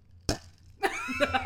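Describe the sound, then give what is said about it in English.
A single sharp clink as two drinks of wine tap together in a toast, somewhat dull rather than ringing, followed after a short pause by a burst of overlapping voices. “We're drinking wine. ASMR. Ready? Clink it.”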